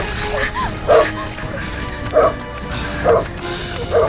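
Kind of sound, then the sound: animal, large dogs barking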